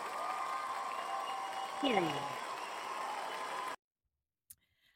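Dense, steady crowd applause with a short swooping cheer in the middle, stopping abruptly after nearly four seconds, followed by silence and one faint click.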